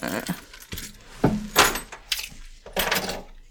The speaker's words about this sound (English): I'm hearing keys. They're mine. Oh, that's probably mine. Oh. We both have our keys. Here, I'll set them over here.